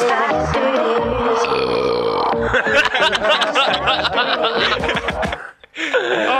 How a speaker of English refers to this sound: I do burp a lot. Like a lot.